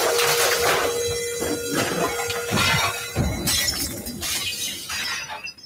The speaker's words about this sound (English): Are those generic Freeuse stock crashing sounds the end of our heroes?